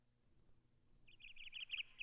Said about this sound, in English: A lot of them have the little chirps in the beginning.